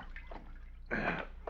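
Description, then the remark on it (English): A brief splash of rose water and glycerin lotion being poured or shaken out of a bottle, a single short burst near the middle, with faint handling noises before and after. “Hand me that rose water and glycerin, Sheriff.”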